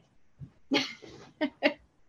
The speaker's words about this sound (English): Sorry, I'm going to get the dog out. Come on, Lulu.